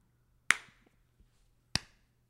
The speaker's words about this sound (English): the highest ranking member claps, and then the second highest member, and then the third, and so on and so forth. So it would take like 15 minutes to clap. And you don't clap like a lot. You just clap once.